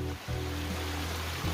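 Fast creek water surges and rushes in a steady, loud roar that fills the whole clip, with a constant low mechanical hum underneath and no voices.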